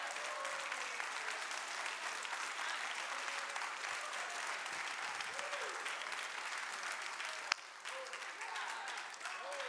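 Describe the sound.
An audience breaks into sustained applause, a dense steady wash of many hands clapping for nearly ten seconds, with faint cheering voices mixed in and one sharp louder clap near the end.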